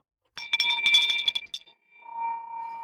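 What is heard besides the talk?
victory bell ringing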